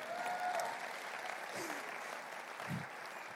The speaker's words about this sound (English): We want to clap? Let's do it.